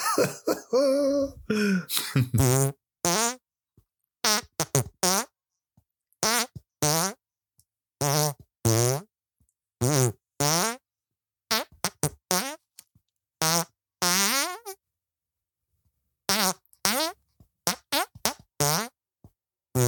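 A long run of loud, buzzy fart noises with shifting pitch, short blasts and longer held tones strung together into a wobbly rendition of Amazing Grace, separated by brief gaps, with no talking.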